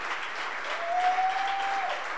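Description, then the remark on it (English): A crowd applauds steadily at a church service to recognize Bishop Ogo, a dense wash of many hands clapping, with a thin sustained tone briefly rising above the noise midway through. “Your clapping is not.”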